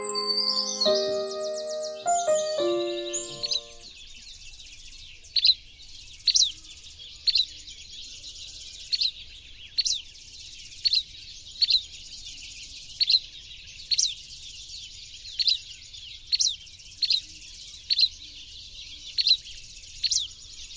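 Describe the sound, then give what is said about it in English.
A buff-breasted flycatcher (Empidonax fulvifrons) gives a steady series of sharp, bright chirps, about one per second, clear against a quiet background, after a brief tonal musical opening. “Those cheeky chirps were just made by a buff-breasted flycatcher.”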